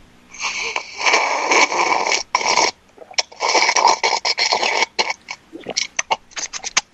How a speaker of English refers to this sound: I'm going to sip my drink again. Here we go.